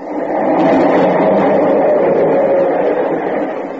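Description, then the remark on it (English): A subway train, which passes every 5 minutes, rumbles by right underneath a home, a loud, steady roar filling the whole clip with clattering mid-range noise before easing slightly at the end. “The subway. It's right under it.”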